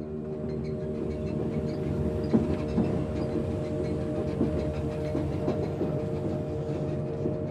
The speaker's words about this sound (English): The train slips us through the city's gates beneath a sickle moon. Light streaks outside breath-fogged windows in a jagged cut that peels us away from the outside world.